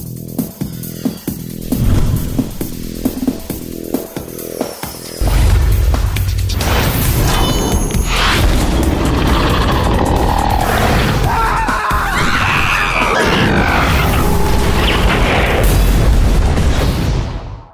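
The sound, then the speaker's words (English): Animated game special effect for the Perforos card: a few sharp knocks lead into a heavy hammer slam as the hammer slams back into a volcano, then a loud explosion boom as lava comes out, rolling on as a sustained roaring rumble with whooshing and crackling bursts, no voices. “Just slams boom. The hammer back in the volcano and it goes boom and all the lava comes out.”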